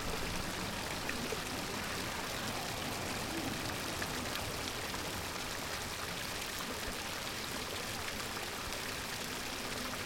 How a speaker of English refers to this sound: Well, you can't hear the bird, but you can hear the fountain.